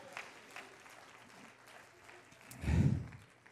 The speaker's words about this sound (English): We ought to clap our hands and thank God for his power.